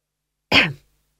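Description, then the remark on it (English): A single short, throaty cough from a man, fairly loud, with a sharp onset and a quick fade, standing alone against silence. “He coughed.”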